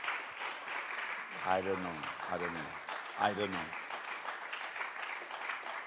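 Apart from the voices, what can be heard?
audience clapping hands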